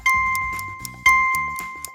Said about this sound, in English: The answer, after these beeps.